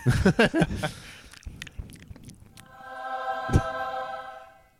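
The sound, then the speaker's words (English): A voice imitates chewing up a berry, with a quick run of wet, smacking mouth noises. A steady, buzzing harmonic tone follows and rings out until the end. “put that berry in his mouth. Chew it up for him first.”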